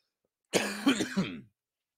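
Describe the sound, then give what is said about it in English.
A fairly loud cough, a harsh burst that rolls into a short raspy throat-clearing rattle lasting about a second, heard on its own with no talking. “But the cough just materialized today.”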